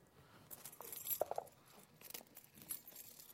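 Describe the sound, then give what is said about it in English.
Keys jangle on the speaker's key ring holding many keys in a short burst of bright metallic clinks and rattles, fairly quiet, with a few sharper chinks near the middle and no voices. “how many people here have a key ring with just one key on it?”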